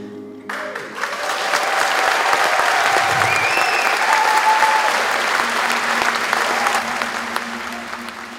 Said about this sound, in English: As the crowd cheers,